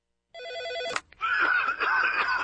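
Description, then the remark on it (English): An old PBX office desk phone rings loudly for about half a second, followed by a sharp click, then a wavering, warbling electronic tone that carries on to the end. “This is your old PBX phone system.”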